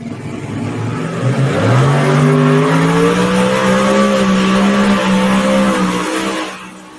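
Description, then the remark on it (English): Twin Hemi engines on a modified pulling tractor from Nerstrand, Minnesota roar loudly during a tractor pull run, their pitch climbing then holding steady for several seconds before easing off. No one speaks. “Jacked up, relentless, taking a shot there. Comes out of Nerstrand, Minnesota. Two big Hemis.”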